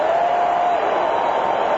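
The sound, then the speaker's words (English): A huge crowd at Pro Players Stadium roars and cheers after Mark McGwire hits his 56th home run, tying the National League single-season record, in a dense, steady wall of noise that stays loud throughout, with no clear voice rising above it. “And they are going berserk at Pro Players Stadium. Look at this crowd.”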